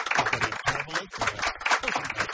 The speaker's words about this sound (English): Welcome to Get This Around the Nation on Triple M with yes, polite applause again, if you would,